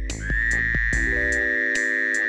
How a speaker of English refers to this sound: various phrases scientists have used to describe the call of the male Fowler's toad